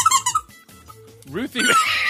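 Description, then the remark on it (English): A dog chomps an ice-cream-cone squeaky toy, squealing in quick, high-pitched bursts, with a brief pause and then a longer run of squeaks. People talk over parts of it. “My kids bought her squeaky toys today.”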